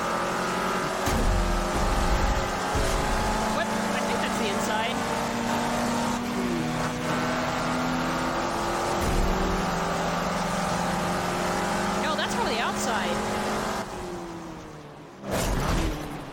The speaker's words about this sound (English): In one of the parts that you drive, when you put it in one of the really fast cars, when you put it in the inside view, it sounds like a freaking plane. Oh, nice. It's like a... This one? Here's what it sounds like on the inside.